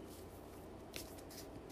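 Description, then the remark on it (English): A deck of tarot cards being shuffled by hand for a reading, soft papery swishes with a couple of brief crisp bursts of riffling, no voices over it. “All right, so I'm running my hand, shuffling the deck.”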